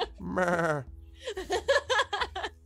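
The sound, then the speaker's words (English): A goat lets out a long, wavering bleat, followed by a quick series of shorter, quavering bleats, with no talking. “And he nods and then bows slightly and then turns and walks off, goats in tow, and begins to stack rocks on top of rocks again, back on his tower.”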